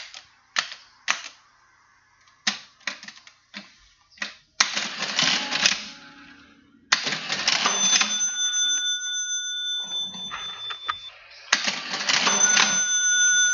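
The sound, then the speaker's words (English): A mechanical cash register being operated: a series of sharp key clacks and clunks, then the ratcheting whir of the drawer mechanism and a bright bell ding, repeated, clear with no talking. “Cash register? That is it, a cash register.”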